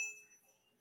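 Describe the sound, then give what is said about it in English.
A single bell ding rings out with a bright, high metallic tone and a lower hum beneath, fading steadily over under a second with no voices. “Oh, I was going to ding the bell.”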